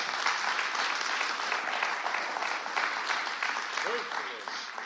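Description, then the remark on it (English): A crowd of many people claps hands steadily in a dense, continuous wash of applause lasting several seconds, giving a hand clap of praise to God during a sermon, with a faint voice briefly audible near the end. “Now give him the hand clap of praise.”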